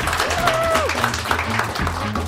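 An audience breaks into a steady round of applause, dense overlapping clapping holding at an even, fairly loud level for about two seconds, with faint voices and a brief whistle-like tone underneath.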